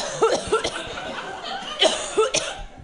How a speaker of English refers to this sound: Okay, now you cough.